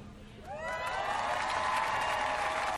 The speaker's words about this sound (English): Frasier is walking through an airport. The fake audience is clapping and cheering. And so you see starring Kelsey Grammer on the screen.